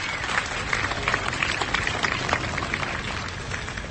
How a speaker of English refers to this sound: I think we should give them a great round of applause for organizing a wonderful day today. How about a great round of applause?